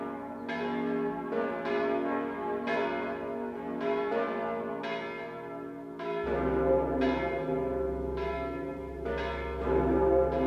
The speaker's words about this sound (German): Budapest, die letzten beiden Glocken von Matthias.